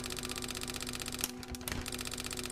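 A teletype machine (teleprinter) clatters out a message sent over telephone circuits in a rapid, continuous stream of mechanical clicks over a steady motor hum, pausing briefly midway before the typing resumes, fairly loud.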